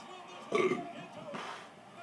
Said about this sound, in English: I am just burping all over the place.